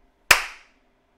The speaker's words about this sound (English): Occasionally, clap once loudly.